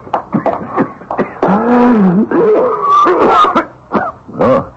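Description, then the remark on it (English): A harsh, rasping coughing fit: several loud, ragged bursts broken by strained, groaning breaths and throat clearing, with no words spoken. “That's not a good sounding cough, brother.”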